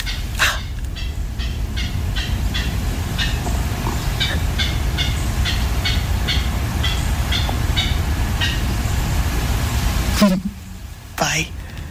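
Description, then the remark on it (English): A clapper rail's clattering call, recorded in Georgia in the morning: a long, steady series of about a dozen dry, rattling claps, loud over a low rumbling background, ending abruptly with a couple of sharper sounds. “I think they get their name clapper rail because they sort of clatter or clap their beaks together, hiding out in salt marshes.”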